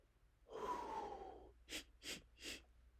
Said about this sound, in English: Let me breathe for a second. I'm doing a lot of talking and not a lot of breathing.